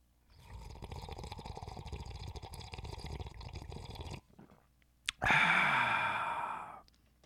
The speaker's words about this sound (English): If you got your coffee mugs, your travel mugs, your sippy cups, your doggy bowls, you got a beer hat, you want to drink it like that, then go ahead and do so. And join me in this sip of cafecito.